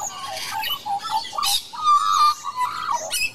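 An Australian magpie sings a rich, warbling song of fluting notes and gurgling bursts, continuous for a few seconds, with no one talking.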